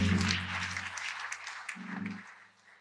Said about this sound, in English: Come on, put your hands together. Give the Lord a hand clap of praise and take your seat.